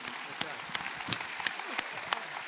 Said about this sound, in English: Welcome along. A big round of applause for Peter Fitzsimons.